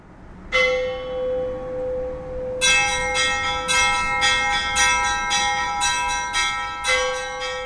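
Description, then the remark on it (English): Church bells rung by hand in a church bell tower ring loudly: a single resonant strike, a short pause, then a steady run of overlapping peals with long humming tails and no voices. “You know, we're told that the bells are the voices of the angels calling us to worship, so it starts your sort of religious experience from even before you enter the church.”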